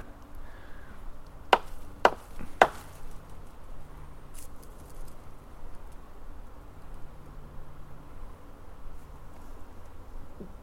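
Three sharp, loud knocks in quick, even succession, followed by several seconds of quiet outdoor background with a faint insect-like hum and no voices.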